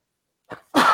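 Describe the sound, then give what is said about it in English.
A single sneeze: a soft, short intake of breath, then a loud, explosive, hissing burst that fills the rest of the moment. No talking, with silence before it. “Bless you.”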